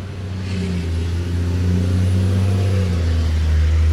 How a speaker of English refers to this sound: That is a tiny trailer on that huge horsepower truck. I'm like, that truck's not as loud as that truck, and they're carrying twice the stuff.